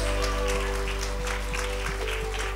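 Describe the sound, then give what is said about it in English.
An audience at an evening church service claps for the Lord in a steady, dense patter of many hands that holds through the whole moment, over a sustained low hum. No one speaks. “Let's give the Lord a clap tonight.”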